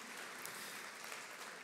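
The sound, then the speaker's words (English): An audience claps their hands together as a hand clap for God, in sustained, dense applause, a steady wash of many overlapping claps for the whole stretch without any voices. “Come on, let's give God a hand clap by faith in advance.”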